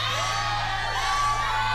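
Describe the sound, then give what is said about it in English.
A live crowd cheers and whoops loudly, a dense wash of overlapping shouts and high yells sustained throughout the short stretch with no pause. “Ooh, we got a crowd favorite.”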